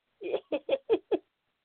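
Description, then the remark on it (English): A pet bird freaking out as a neighbor comes over squawks in a quick run of five harsh, raspy calls, loud and evenly spaced, with no talking over them. “The neighbor coming over, that bird is freaking out.”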